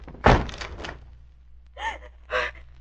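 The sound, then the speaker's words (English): A door is forced open with a single heavy thud that rings out briefly, followed by two short, breathy gasps a moment later. “Try to force the door open quickly.”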